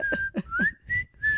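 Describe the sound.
Someone whistles a short tune from the film Kill Bill, holding steady notes with small upward slides, punctuated by a few soft breathy bursts in the first half.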